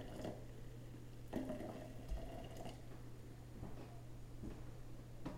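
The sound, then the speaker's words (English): Just-boiled hot water from a kettle is poured steadily into a glass French press, a continuous splashing fill with a low hum underneath and a few faint clinks along the way. “He is now pouring hot water into the French press.”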